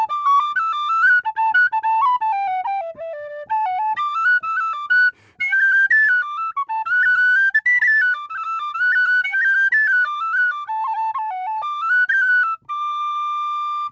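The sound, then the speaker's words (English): A tin whistle plays a brisk, lilting Irish jig alone, bright high notes skipping quickly up and down in a steady bouncing rhythm, clear with no voices. “Is there a happy jig on your tin whistle?”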